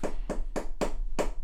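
Five sharp knocks on a desk in a steady, evenly spaced rhythm, each a hollow, mid-pitched thud with a short ring. They are fairly loud, with no voices.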